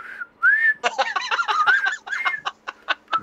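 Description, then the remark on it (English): A bright whistled tune from a trailer, with sliding, rising notes, accompanied by quick, choppy percussive bursts that keep a lively, bouncy rhythm throughout. “Well, it's like, you know those songs that all of a sudden people just start whistling and then you just join right in?”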